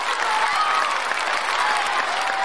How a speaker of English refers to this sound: send us your screenshot of Forest Frontiers with the people clapping, because they love it at the end of your park where they go, yay, and then they let go of all their balloons.